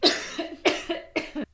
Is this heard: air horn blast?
no